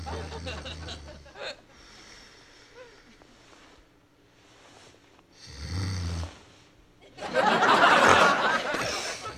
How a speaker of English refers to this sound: Oh, was I snoring?